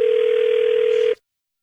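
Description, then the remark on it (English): A steady telephone ringing tone heard over a phone line, one continuous burst lasting about a second with a faint hiss beneath it, then cutting off abruptly into silence. “Okay, it's ringing.”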